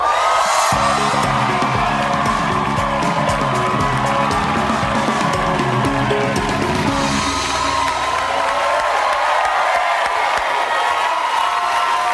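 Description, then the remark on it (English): A loud, sustained burst of talk-show studio audience cheering and applause as guest a musician, is welcomed, with whoops and shouts over steady clapping, holding strong for about twelve seconds while band music plays underneath. “Your crowd is really loud.”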